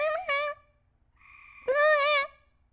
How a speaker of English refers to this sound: Can you hear this bird still?